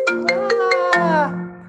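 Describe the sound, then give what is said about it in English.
A mobile phone ringtone plays a quick run of bright, evenly spaced electronic notes, fairly loud, ending on a held tone that fades. No one speaks. “We can edit that out, which reminds me I should mute my phone too.”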